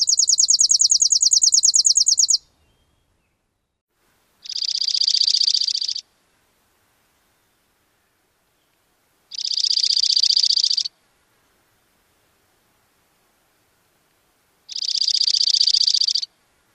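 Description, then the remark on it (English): A dark-eyed junco sings three evenly spaced musical trills, each about one to two seconds long and clear, after a brief, higher, faster trill at the start. No one talks. “Again, first the chipping, then the junco.”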